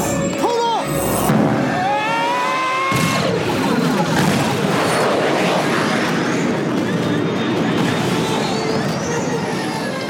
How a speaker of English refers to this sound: Oh, X-Wing's crashing into the shield.